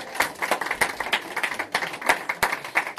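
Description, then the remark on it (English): An audience applauding the kids after their performance: many hands clapping at once in a dense, steady patter, with sharper individual claps standing out, moderately loud and sustained throughout, with no voices. “Hey, can we give another round of applause for the kids?”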